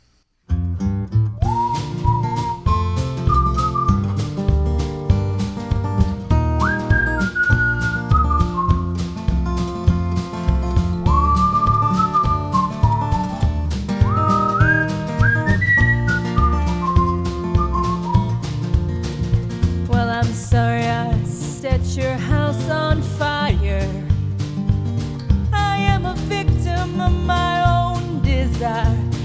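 A song opens with a steady plucked and strummed accompaniment while a clear, high whistled melody glides and bends above it, later joined by brighter percussive accents.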